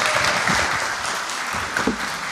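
A church audience applauds steadily for a speaker who talked about Spring Harvest, many hands clapping in a dense, bright wash that stays loud and even for a couple of seconds.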